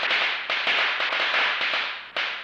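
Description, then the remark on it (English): A rapid, irregular string of sharp firecracker bangs, set off as a car drove past a hilltop mosque in Orland Park near Chicago, pops over a dense, hissing crackle, fairly loud and continuous for a couple of seconds, with no voices. “I heard men shouting, then a series of bangs.”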